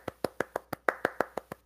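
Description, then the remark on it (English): A short burst of applause: about ten crisp, evenly spaced hand claps in a steady quick rhythm, like one person clapping alone, with no voices. “Round of applause.”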